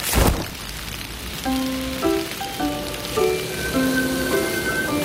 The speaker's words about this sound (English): It's still raining. Umbrella up.